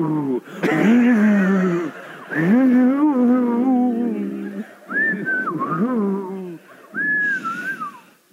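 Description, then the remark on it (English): A person imitates the cocky, demonic-sounding whistle of Walter that the committee heard from outside: loud, swooping voiced tones, followed by several short, sliding high whistles in bursts with brief pauses between them. “And so outside the committee heard, quote, Walter whistling with his best cockiness.”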